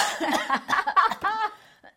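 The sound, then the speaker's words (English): A short run of a woman's nervous coughs and throat-clearing bursts, several quick rasping hacks at moderate loudness, fading out with one faint final cough. “No, I think I just got a tickle in my throat.”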